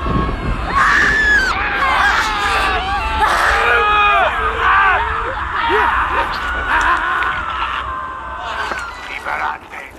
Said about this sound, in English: The first thing is the captions say woman screaming, and it's somebody with a bunch of blood on their face screaming.